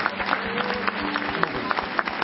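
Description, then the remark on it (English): A church audience claps their hands to God in a dense, steady burst of applause, with crowd noise and a low sustained tone underneath, loud throughout. “Somebody give a hand clap to God for...”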